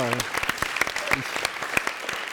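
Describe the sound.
An audience claps steadily, a dense patter of many hands with sharp individual claps standing out, and a brief voice is heard at the very start.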